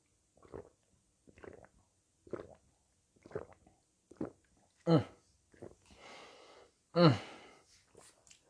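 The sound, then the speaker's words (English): A series of short, soft gulping sips of water repeats at a steady pace, followed by two louder, breathy exhalations like a satisfied gasp after drinking. “So I'm going to sip this water and we're going to get started.”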